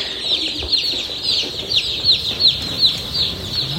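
A crowd of baby chicks, newly arrived on a farm, peeps loudly and continuously in a brooder room, dozens of shrill, overlapping high chirps making a steady chattering din. No one speaks.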